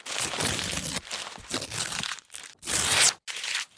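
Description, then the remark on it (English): A paper note is torn and shredded in several bursts of crinkly, crunching rips, with brief pauses between. A longer, harsher tear stands out near the end, followed by one last rip. No voices. “Thirded, let's shred this thing.”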